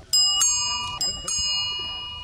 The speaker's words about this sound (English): I recently got a ding-dong bell at Clever Cycles, and it is awesome.